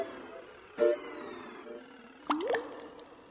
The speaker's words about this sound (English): Drip, two, three, four. Drop, two, three, four. Drip, two, three, four.